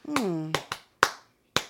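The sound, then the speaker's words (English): Five sharp hand claps in an uneven rhythm, the first two landing over a brief vocal exclamation that slides down in pitch, the rest crisp and alone with short gaps. “I don't know why I just clapped like that.”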